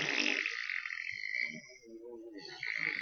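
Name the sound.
fart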